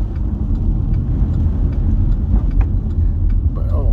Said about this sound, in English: Just be careful of the road. It's rainy. Rainy times, boys and girls. Rainy times. But, not too bad on the way to work. I'm driving just like a slower pace than usual because it's raining.